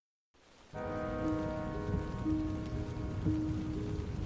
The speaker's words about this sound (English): Rain drizzled over the canyon of the South Fork of the Ogden River. It pattered on the canvas top of Heidi Posnien's Jeep as she drove up Utah State Highway 39 on the morning of Friday, June 4th, 1971.